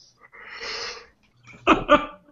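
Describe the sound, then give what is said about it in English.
A big yawn: a long, breathy, rushing inhale, then a brief pause and a loud voiced exhale that wavers in pitch before trailing off. “Was that a huge yawn? It was.”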